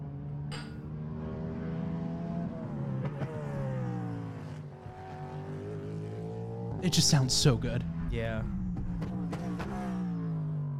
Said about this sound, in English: Leaving pit road. Okay. That is full electric. For like the first 40 miles an hour. And kicking on the engine. And just hearing it.